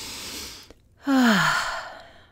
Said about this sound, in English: First, let's start by taking a deep breath in and breathing it out.